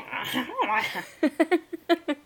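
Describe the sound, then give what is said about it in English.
A person imitates a horse, starting with a warbling, rising-and-falling whinny and ending in a quick series of choppy, stuttering neigh-like bursts, fairly loud. “did you hear that horse noise I just made?”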